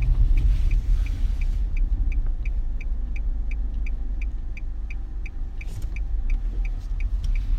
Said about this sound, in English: Hear my clicking? Click, click, click, click. All right. Yeah, I'm making a left turn.